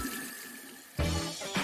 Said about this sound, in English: After the process has calmed down, open the taps and let some lukewarm water run for a minute or so. It should wash off all the residues that were clogging your pipes.